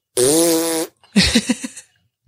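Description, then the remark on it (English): A voice imitates a loud, sick-sounding motorbike at William Creek: a steady, buzzing drone held for under a second, then a pause and a run of about five sputtering, popping bursts. “Is that like, you know, there was one person and they had a really loud bike and it sounded like it was sick.”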